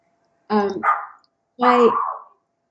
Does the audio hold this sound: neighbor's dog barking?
yes